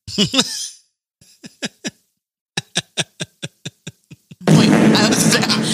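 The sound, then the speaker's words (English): A soundboard fart effect: a few buzzy blasts, a short pause, then a rapid, rhythmic string of about a dozen sputtering pops, cut off by a sudden wash of loud, hissy noise. “how come you keep doing the fart ones and Dan's not doing any?”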